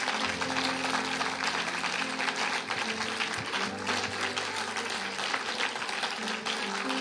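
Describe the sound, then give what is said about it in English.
A crowd claps their hands unto the Lord in sustained, dense applause that fills the room, steady and fairly loud over several seconds, with a low musical hum underneath. “If you have received anything from the Lord that you're going to protect and allow it to grow, would you just clap your hands unto him? Give him one more round of applause.”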